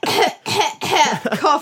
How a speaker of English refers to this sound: cough.